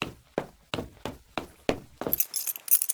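A steady series of six dull thumps gives way to a bright, metallic jingle of keys rattling for about a second as a theater's green room door is locked, with no one speaking.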